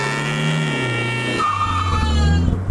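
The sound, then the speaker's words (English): A car engine drones and shifts pitch as a woman drives away while screaming, a high, strained scream ringing out continuously over the motor for a few seconds. “She literally drives away as she's screaming.”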